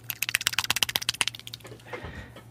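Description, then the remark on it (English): A mouth-made imitation of a bird flying, made by a sound designer for the background of a political commercial: a quick, even run of about twenty sharp clicking flaps over a second and a half, trailing into a soft, breathy whoosh. “I was doing a political commercial once, and I had to get this bird flying in the background. I was like, I don't have that. I went.”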